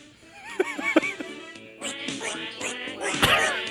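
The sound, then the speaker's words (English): A duck trumpet honks out a string of nasal, quacking blasts: two sharp squawks first, then a busier run of raspy, bleating honks that grows louder toward the end. No one speaks. “I'm a 29-year-old black male, and I'm dying at these fucking duck trumpets.”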